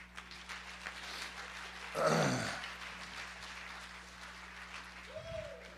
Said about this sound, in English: Here, give the Lord a hand clap.